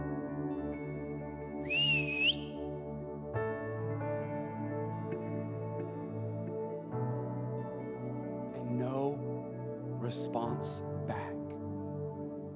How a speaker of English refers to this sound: The disappointment of whistling.